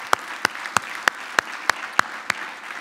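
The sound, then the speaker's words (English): An audience applauds the Lord, sharp unison claps landing in a steady beat about three per second over a softer bed of scattered clapping, with no voices. “Let's give the Lord an applause, can we?”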